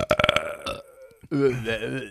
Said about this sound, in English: All right, let's burp. Let's burp. You ready? 3, 2, 1.